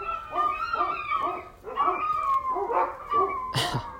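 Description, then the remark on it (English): Several dogs bark and whimper in a steady run of short, high-pitched yelps and whines, with a sharper, louder bark near the end. No one speaks. “These dogs.”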